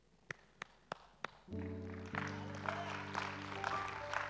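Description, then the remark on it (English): In a church, four sharp, evenly spaced hand claps ring out alone, then a sustained, layered low tone swells in and continues with a busy wash of sound over it. “No, you don't even know why I'm clapping.”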